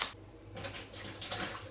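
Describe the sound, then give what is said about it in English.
Water is poured in a steady stream into a container to weigh out a quarter pint for a cherry recipe, a continuous splashing rush with a brief lull before it picks up again, fairly quiet. “And just weigh out some water now.”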